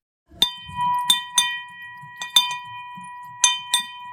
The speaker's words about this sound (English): So at Hudson Kitchen, we have what I call the money bell, where we ring it when we're celebrating something. It's in the lobby of our facility.